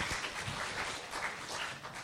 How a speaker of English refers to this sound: Okay, round of applause, my wonderful assistants.